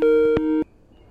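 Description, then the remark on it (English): A telephone busy signal on a call attempt: a steady dual-tone beep sounds for about half a second with a short click in the middle, then cuts off abruptly, leaving faint line hiss. “Your phone is not working, sir.”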